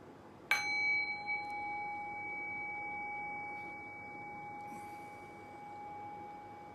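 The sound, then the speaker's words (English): A single meditation bell is struck once, giving a sharp attack followed by a clear, sustained tone with bright overtones that hums steadily and fades only slightly. No voices are heard. “I'll ring the bell just to come into silence, just to come into the present moment.”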